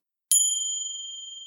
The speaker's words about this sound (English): So while we're reading and talking, you're going to listen for the sound of Christmas bells.